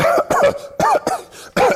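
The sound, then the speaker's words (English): A person coughs loudly, about five harsh, voiced bursts in quick succession with brief pauses between them, with no other sounds around. “So that means there's a person right there, 6 feet away from me, and they were coughing.”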